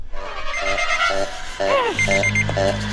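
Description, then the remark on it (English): A rapid, regular electronic beeping pulses several times in quick succession, loud, with a brief sliding tone and some background noise mixed in, from an electronic stinger set off by a proximity sensor as a man runs away. “And as he's running away, all of a sudden you hear this beeping sound, and then he buckles over in pain.”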